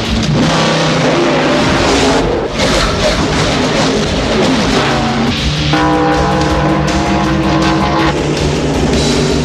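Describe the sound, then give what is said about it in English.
Loud, continuous engine roar of race cars heading into turn four of a race track, with pitch rising and sliding as they accelerate and pass, steady and dense throughout with no talking. “And they're heading into treacherous turn four.”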